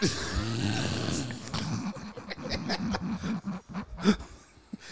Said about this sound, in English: That ain't him laugh. That's him snoring.